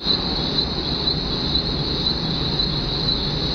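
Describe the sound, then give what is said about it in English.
A steady, high-pitched buzzing drone of cicadas fills the scene, with faint repeating pulses layered over a dense low rumble of background noise, no voices present. “Meanwhile, Cicadas made love.”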